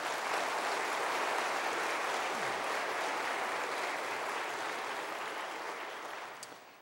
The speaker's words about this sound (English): If you're blessed by the choir, let's give them one more round of applause.